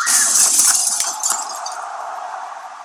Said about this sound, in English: And smashes this lamp and this table in Stephanie's office. And the emotional freight train, dude, is just steamrolling through her office. Steamrolling through the lamp, dude. He just smashes the lamp with his broken hand.